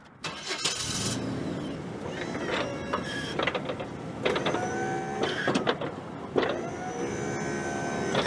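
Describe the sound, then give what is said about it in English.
A snow plow truck's engine starts and runs steadily, its loud rumble joined by several rising mechanical whines that come and go in bursts over the idle. “So why don't I fire on the truck and show you how it works?”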